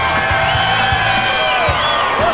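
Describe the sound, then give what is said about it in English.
A large crowd cheers and whoops loudly and continuously, with many overlapping shouting voices and sweeping high-pitched yells rising over a dense roar, plus scattered rhythmic thumps underneath. “What are you cheering for?”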